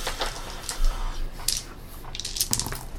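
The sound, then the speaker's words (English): Many dice rattle and clatter in a few brief bursts across a hard surface as they are rolled for an attack, the sharp clicks scattered unevenly and fairly quiet, with no one speaking. “That was too many dice.”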